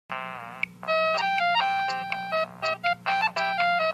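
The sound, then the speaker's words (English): A phone rings with a bright electronic melody, a run of short stepped notes repeating over about four seconds, fairly loud and alone over a low steady hum, as an important call from a doctor comes in. “But just as the show is about to begin, Reg receives an important phone call about his ball condition.”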